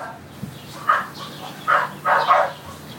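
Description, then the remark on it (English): Dogs barking in a few short, uneven bursts, about four barks over a few seconds, moderately loud, with no talking. “Shut those dogs up.”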